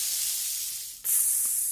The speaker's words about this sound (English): Sizzle, sizzle, sizzle.